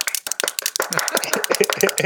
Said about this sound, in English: Round of applause for Robert M. Hernandez, Jr. He just won a Two Keto Dudes mug.